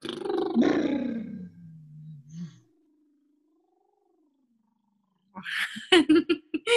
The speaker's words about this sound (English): We could take a big inhale and reach the arms up over our head. And then on the exhale, we could go.